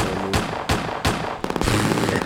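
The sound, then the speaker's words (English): A gunshot sound effect: three loud, evenly spaced gunshots ring out, followed by a rapid crackling burst of automatic fire, with a low sustained tone underneath. “I love the gunshots.”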